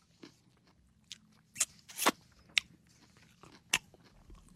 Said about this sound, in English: are your ears picking up the chewing? The lack of sight certainly doesn't make you a quieter eater.